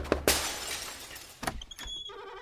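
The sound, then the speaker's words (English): A woman knocks on the door of a farmhouse with her hands: several firm, sharp knocks, loud, spaced unevenly over a couple of seconds with a faint creak-like tone trailing after. “approaches the door and gives a firm rat-a-tat-tat with her delicate prizefighter hands.”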